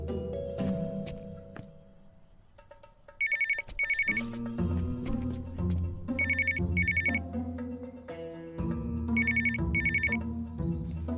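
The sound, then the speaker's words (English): A telephone rings in repeated double bursts, three pairs of bright electronic trills spaced evenly apart, sounding over a steady background of music with no voices. “It's rude not to answer phones.”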